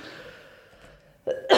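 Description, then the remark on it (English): After a quiet stretch during a technical hitch, a short throaty sound leads into one loud, harsh cough right at the end. “I'll take this technical hitch to cough.”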